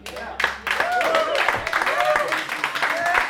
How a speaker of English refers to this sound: Tepid smattering of applause. I have counted 5 applauses. 5 different sets of hands clapping. Oh. I've identified 5 different tonalities.